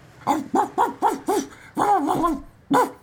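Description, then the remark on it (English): A dog barks in a quick, bright series of about five sharp yaps, then a longer wavering bark and one last yap, loud, with the scamper of legs and no talking. “Just then, a bark and the scamper of legs broke the attention of the chicken and the cat.”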